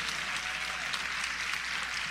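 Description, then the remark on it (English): An audience claps steadily, a dense, even wash of many hands with no pauses and no voices standing out; the audience is applauding a minister who was given a Duke Fellowship. “Now, y'all really gonna clap because a Duke Fellowship basically means he ain't got to pay for nothing next year.”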